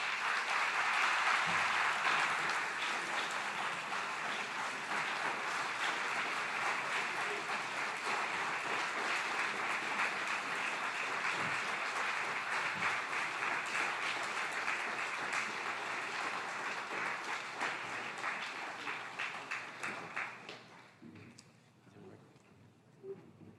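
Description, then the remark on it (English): Sustained applause from a large audience at the end of a lecture, a dense crackle of many hands clapping steadily for about twenty seconds before thinning out and fading to a few scattered claps. “I'm sure you want me to express thanks. Your applause said it all.”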